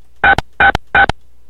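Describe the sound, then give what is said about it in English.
Three short telephone keypad tones beep in an even rhythm, each lasting a fraction of a second and ending with a brief click, with quiet gaps between them and no talking. “To listen to Evan Doorbell and Group Bell recording, press 1.”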